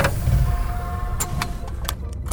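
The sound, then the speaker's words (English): A spaceship engine starts up for takeoff on a trip to the planet Shoestring Beta, a low, steady rumble with faint humming tones, then several sharp clicks and bursts break in over the drone during the second half. “In the meantime, strap in and prepare for takeoff.”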